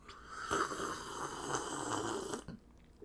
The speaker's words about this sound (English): Okay, let me sip my tea, girl.